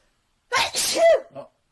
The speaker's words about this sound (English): Bless you. I knew that was coming.